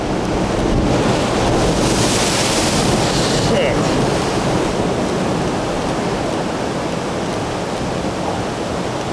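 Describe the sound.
Loud ocean surf rushes in as a swell comes through and the sun comes out, a wave surging and breaking early on, then a steady roaring wash with wind buffeting the microphone. A man briefly exclaims.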